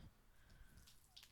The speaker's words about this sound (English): Wow, did that all melt that quickly? Yeah. That's crazy. There's still some ice. Just felt so good to pour on my leg.